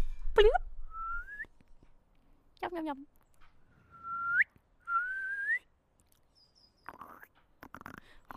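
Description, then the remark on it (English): Someone imitates a frog with their voice, making about five whistly, upward-sliding croaks and chirps with short pauses between them, then a few faint clicky mouth noises at the end. “gosh, your flipping frog sound is so good.”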